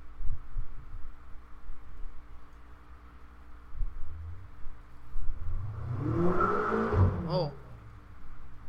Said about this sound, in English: Car up the street. Oh, I bet it's that nurse dude.